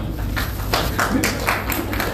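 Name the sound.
smattering of applause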